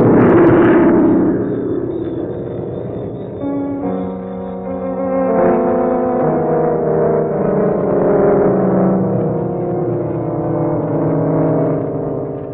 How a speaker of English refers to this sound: She exploded in midair and now she's falling.